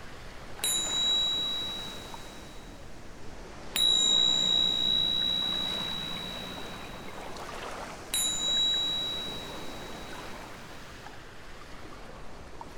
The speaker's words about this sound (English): I'm going to begin and end this meditation with the chimes so that you know where we're at.